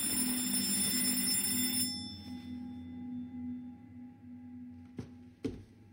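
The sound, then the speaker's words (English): An electric doorbell rings in one loud, buzzing burst for about two seconds, then cuts off, leaving a low fading hum followed by two sharp clicks. “Which was, yeah, when my doorbell rang.”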